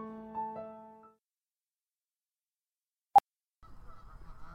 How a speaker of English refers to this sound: Welcome to Rabbit's Nature Show. This week, geese.